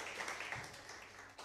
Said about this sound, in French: Can you give a big clap offering unto the Lord? Est-ce que vous pouvez applaudir au nom du Seigneur?